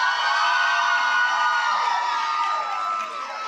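A loud, sustained wave of audience cheering at a service, with many high-pitched screams and shouts blending into one continuous roar that barely eases toward the end.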